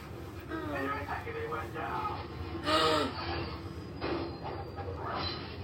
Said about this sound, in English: Train.